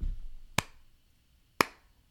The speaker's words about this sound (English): Slow clapping for the Austin Chronicle.